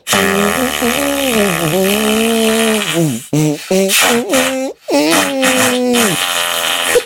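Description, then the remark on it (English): Musical arm farts, made by putting the mouth on an arm covered by a sweater and blowing, play a loud tune: one long wavering buzzy tone, then a series of short, choppy pitched blurts. “I'm wearing a sweater, so my musical arm farts won't be quite as good.”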